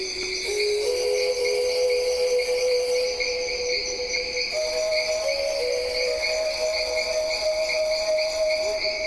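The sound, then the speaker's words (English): A dense Amazon rainforest chorus of insects and crickets, recorded at Kilometer 41, a research station north of Manaus, trills steadily in high, layered bands, while a lower sustained tone steps upward in pitch, all continuous with no talking. “it begins with sounds that I recorded in the Amazon at a place called Kilometer 41, which is a research station north of Manaus, which is kind of midway in the Amazon.”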